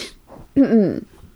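A single sneeze: a short breathy hiss, a brief pause, then a loud, voiced burst with a wavering pitch that fades within about half a second. No talking.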